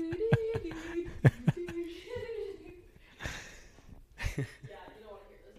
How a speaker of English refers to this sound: Sounds lovely. I love the sound of noses being blown. Nothing like snot in the morning. So snotty.